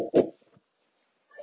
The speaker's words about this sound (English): Oh, who's that? The dog barking in the distance.